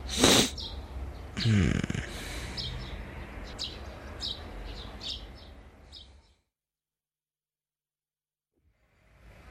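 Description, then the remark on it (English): Birds chirp at sunrise in quick, high, repeated calls over a steady outdoor hiss, after a couple of loud snorting bursts at the start; the sound then cuts to near silence. “Birds chirping, rising sunshine, stomachs cramping up.”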